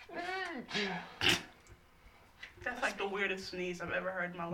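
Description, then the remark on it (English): An odd, sharp sneeze bursts out once, loud, between stretches of strained, squeaky vocal sounds, with people talking around it. “That's like the weirdest sneeze I've ever heard in my life.”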